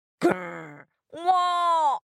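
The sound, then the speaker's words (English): A person voices two low, drawn-out grunting groans in a row, imitating a yak, each held for well over half a second with a short pause between them, fairly loud. “Yak grunted.”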